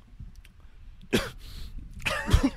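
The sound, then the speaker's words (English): A voice imitates a woman coughing and hyperventilating after eating: two harsh, noisy bursts about a second apart, the second louder, with rough breathy rasps in between, without speech. “The hyperventilation. She's like coughing.”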